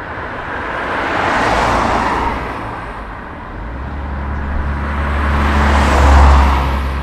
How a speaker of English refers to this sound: Cars and trucks rumble along the road that links Cavan with Fermanagh. If they're travelling south to Cavan, they'll shortly arrive in Belturbet. But if they're going north to Fermanagh, in a few miles they'll come to the busy village of Derry Lynn.